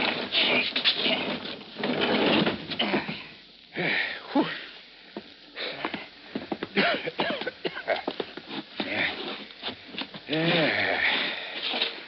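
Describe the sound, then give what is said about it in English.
A heavy train car door grinds and scrapes as two people drag it shut, a rough, continuous rumbling noise lasting several seconds, with brief strained vocal sounds mixed in. “But first, give me a hand. We'll close this door.”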